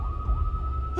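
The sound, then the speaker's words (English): Approaching emergency vehicle sirens sound clearly, a high steady tone overlaid by a faint wavering wail, above a low rumbling background, with no voices. “The sirens, the lights, they're so close.”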